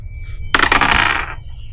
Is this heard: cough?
no